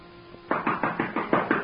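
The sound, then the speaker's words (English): Six quick, firm knocks on a wooden door in a steady rhythm, fairly loud, following a brief quiet moment with a faint background hum. “Answer your door, Zeigler.”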